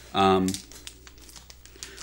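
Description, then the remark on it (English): A brief voice, then soft, irregular crinkling and rustling of a paper pack being opened, light crackles scattered over about a second and a half. “Opening the paper.”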